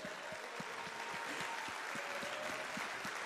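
An audience applauds steadily as the morning's speaker is introduced and stands up, a dense wash of many hands clapping at an even, moderate loudness with no voices over it.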